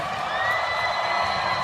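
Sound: audience cheering and applauding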